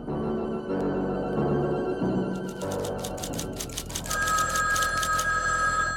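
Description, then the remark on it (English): An old-fashioned telephone bell rings loudly in rapid repeated trills, starting a few seconds in over a low background bed of music or room noise. “I've asked you not to phone me while I'm working.”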